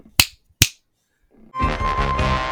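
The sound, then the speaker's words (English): Two crisp finger snaps ring out, about half a second apart, followed by a pause and then music swelling in loudly. “42 years of existence on this planet Earth, a lifetime of finger coordination from playing video games, and I could never learn to snap my fingers.”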